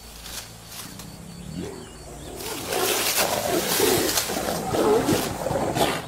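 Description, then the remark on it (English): Low, rumbling growls and moaning calls from two young female Siberian tigers, rising in intensity halfway through and continuing, with faint outdoor background noise and no talking. “Siberian Tigers”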